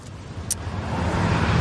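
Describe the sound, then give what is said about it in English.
A steady low car engine rumble, moderately loud, gradually swelling over a couple of seconds, with a brief faint click partway through and no voices. “So there he is in his car, calling his secretary.”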